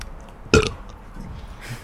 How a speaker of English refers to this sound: That's actually kind of a tone as to what to expect. If you didn't know what to expect before, it's like mostly burping. Burps.